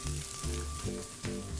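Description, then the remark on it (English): Chicken livers sauté steadily in olive oil in a pan over high heat, a dense crackling hiss with a low hum underneath and no voices. “So now that our chicken livers are sauteing, we can go ahead and work on the rest of our dish.”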